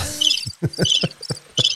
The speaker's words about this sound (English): I thought I heard crickets chirping.